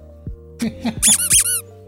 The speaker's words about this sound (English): You get a duck squeak on that one